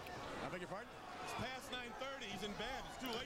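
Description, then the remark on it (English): A single heavy thud as a wrestler in a blue and white singlet and white boots is picked up and slammed down onto the ring mat. The brief sharp impact is heard beneath a man's continuous excited commentary. “now picks him up, drops him down.”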